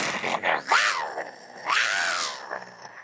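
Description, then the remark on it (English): A woman in plastic Halloween-style armor, striking a pose with a menacing expression, imitates a vicious monster growl twice, with two drawn-out, strained vocal snarls that sound more nasal than deep, with short pauses between them. “No longer looking so sweet-faced, dons as menacing of an expression as she can and attempts a vicious growl while striking a dead pose in her plastic, crappy, Halloween-styled armor.”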